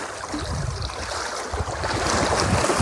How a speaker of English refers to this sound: Lake sparkling, singing. And this, as I sit here, or stand here, watching the waves come in, the idea or the question came to me.